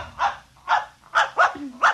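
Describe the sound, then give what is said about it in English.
A puppy dog named Mr. Blister barks five times in quick succession, sharp, energetic yaps at an even rhythm, with a bit of growling between them and no one talking. “I'm going to introduce you to my puppy dog, Mr. Blister.”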